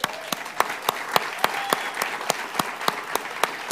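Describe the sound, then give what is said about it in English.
A crowd claps together in a steady, even rhythm in response to a reading of Psalm 47, verse 1, sharp synchronized hand claps about three per second over a softer wash of scattered clapping, with no talking. “It says in verse 1, "Oh, clap your hands, all you peoples."”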